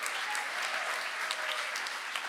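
A crowd applauds a participant who has just attempted a Lego task, many hands clapping in a dense, even patter at moderate volume with no voices over it, continuing for a couple of seconds.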